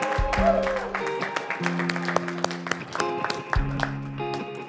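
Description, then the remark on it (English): A large crowd cheers and applauds at an Eagle's Nest Church service, dense overlapping clapping for several seconds while sustained low musical tones hum underneath. “Would you cheer?”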